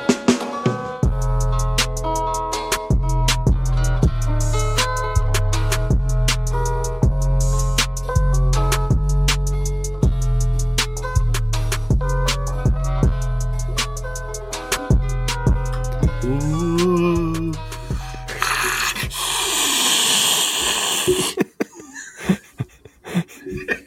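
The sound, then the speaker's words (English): A voice imitates an alien with a harsh, breathy hiss lasting about three seconds, after a long stretch of deep, droning tones and pulsing sounds. Then it breaks off into short, choppy noises. “White noise or your alien impression”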